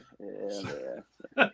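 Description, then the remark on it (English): A female dog named Peaches lets out a drawn-out, wavering whine for nearly a second, then after a short pause gives a single sharp bark, moderately loud. “I hear her barking in the background.”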